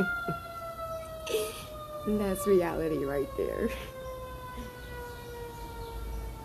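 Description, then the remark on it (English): An emergency vehicle siren wails steadily through city air, its pitch slowly sliding down, while a person speaks briefly over it in the middle. “And if you live in a city, you're gonna hear sirens.”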